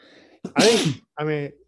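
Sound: sneeze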